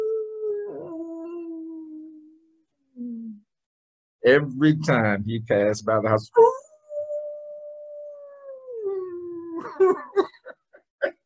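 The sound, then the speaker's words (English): A person voices a dog's drawn-out, moaning howl twice, long sliding wails that rise and fall. A short stretch of speech sits between the two howls, with a few more words near the end. “And the dog would just be moaning.”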